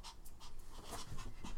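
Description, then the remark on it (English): A small female dog pants rapidly and steadily, quick rhythmic breaths repeating throughout with no one talking. “But yeah, the dog is distracting us. You we'll can probably it. Hear we'll her.”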